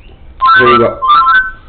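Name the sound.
telephone ringing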